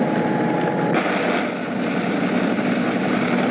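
A fire engine's motor runs steadily on Harrison Street in Detroit during the riots, at a blaze in a block of two-story wood houses: a loud, continuous idling rumble with a rough mechanical hiss that holds even for several seconds, no voices present.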